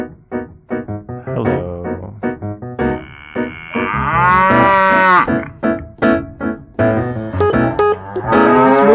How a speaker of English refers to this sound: What about moo? Moo.